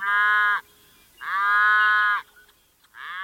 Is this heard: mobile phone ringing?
no